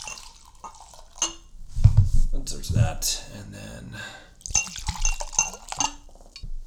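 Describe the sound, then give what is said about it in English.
Bourbon from a newly opened bottle is poured into glasses with a light glassy clink and a short gurgling splash, while people talk briefly around the pour. “We're opening it up. Should we give it a test drive and see?”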